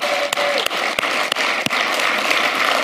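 A crowd applauds the volunteers in a dense, steady wash of clapping, with a few sharper individual claps standing out at roughly even intervals over the constant patter.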